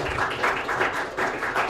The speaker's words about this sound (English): Can you guys give God a round of applause for this building?